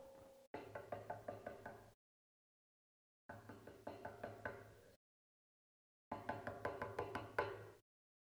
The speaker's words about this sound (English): You know, Jesus said the same thing in the book of Revelation. He said, I stand at the door and knock.